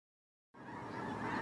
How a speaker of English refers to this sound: The birds! The birds! This is unbelievable.